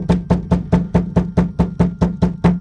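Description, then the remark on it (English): Rapid, insistent knocking on a door, about eleven firm, heavy raps in a steady fast rhythm, loud with no voices. “The knocking continued with more urgency.”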